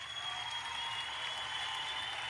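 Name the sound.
hands clapping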